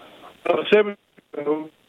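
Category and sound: fault, phone line breaking up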